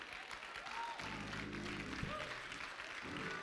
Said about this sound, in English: Clapping is the language of agreement.